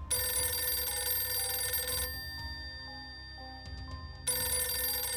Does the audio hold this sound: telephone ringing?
yes